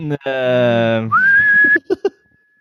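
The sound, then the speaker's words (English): A person whistles loudly, a clear tone that swoops upward and holds steady, preceded by a buzzy voiced sound and followed by a couple of short clicks. “No, excellent whistling, thus disproving the fact.”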